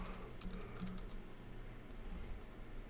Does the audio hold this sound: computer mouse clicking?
yes